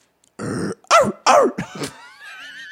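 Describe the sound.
A person growls out a string of gruff, throaty barks, imitating a dog: about four loud rough bursts in quick succession, then a few quieter grunts trailing off.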